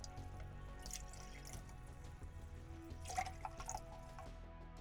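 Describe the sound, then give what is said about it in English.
Whiskey, simple syrup and fresh lemon juice are poured into a cocktail shaker in short trickling bursts, with a few faint clinks near the end. Fairly quiet, with no one speaking. “Mix all the ingredients in the shaker.”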